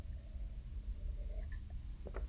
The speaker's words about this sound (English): Currently sipping on some coffee. I ate breakfast earlier. Excuse me while I take a sip.